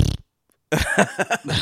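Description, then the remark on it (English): A short blast of fart noise, a brief silence, then a longer, loud sputtering fart noise with several raspy pulses. “Fart noise, orgasms.”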